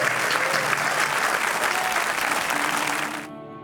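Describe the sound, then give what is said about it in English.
A crowd claps in thanks to an author in a steady, dense, sustained wash of applause that holds evenly for about three seconds, then fades out. “Again, would you join us in thanks to Randy?”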